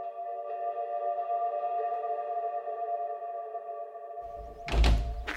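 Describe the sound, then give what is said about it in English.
A back door leading from a house's kitchen onto a lawn swings open with a long, steady, high-pitched creak lasting several seconds, then closes with a single heavy thud. No one speaks. “And we've come out through a sort of back door from the kitchen onto a lawn.”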